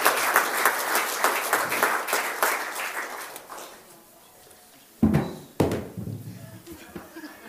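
An audience claps together in a dense, steady burst of applause that fades out after about four seconds, followed by two sharp thumps and some quieter rustling.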